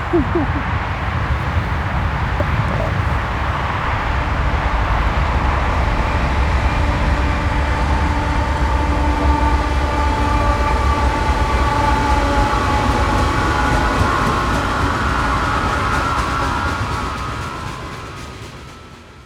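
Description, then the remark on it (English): A train rumbles steadily past, heavy low-end roar with sustained metallic tones and squeals layered above, holding loud for most of the time before fading out near the end. “And I'll tell you what, there's nothing like sitting at dark and seeing a train come by.”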